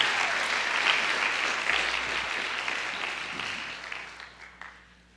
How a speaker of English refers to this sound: Let's give Achilles a big hand of applause.